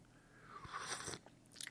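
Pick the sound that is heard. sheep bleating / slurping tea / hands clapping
slurping tea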